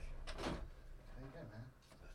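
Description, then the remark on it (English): A door is opened for a visitor who knocked and came up the stairs, with a short, heavy clunk and rustle, followed by a person's voice speaking briefly in the room. “Let me see if that's someone knocking on the door. Maybe the door's locked.”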